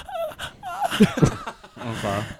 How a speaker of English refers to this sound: I'd also at this point like to point out that I do have a respiratory disorder that makes my breathing very loud. I breathe like this.